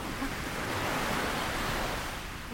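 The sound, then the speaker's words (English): A steady, broad hiss of surf washing against a sandy beach, even in loudness, with no distinct individual crashes and no voices. “so close she could sit where the waves broke on the sand.”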